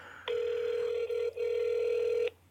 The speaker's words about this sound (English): answer your phone.